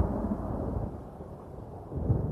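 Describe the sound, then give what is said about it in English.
A deep, rolling thunder rumble from a lightning strike fills the whole moment, heavy and low, swelling again slightly toward the end, with no voices present. “The tiniest fraction of a second, and suddenly all of your eyes are flashing with sparks and confused bubbles as a tall, towering form stands now in the smoking crater that this column of lightning left.”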